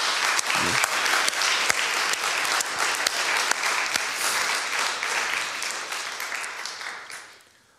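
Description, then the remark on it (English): A large crowd applauds together as a clap offering to God, a dense, sustained wave of clapping lasting several seconds before fading out near the end. “Can we just give a clap offering to our God now?”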